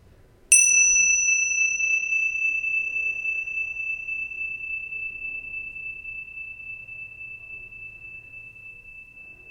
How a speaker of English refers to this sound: Come back, notice the sound of the bell moving through time.